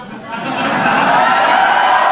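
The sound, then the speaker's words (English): Members of the press cheering and clamoring together, a dense, loud roar of many voices that swells in the first moment and then holds steady for about two seconds. “That's the press cheering.”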